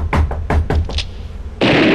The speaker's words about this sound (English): Come in. Wow, she's knocking really hard today.